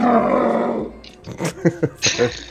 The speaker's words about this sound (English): That's the Sea Lion sound effect I always played.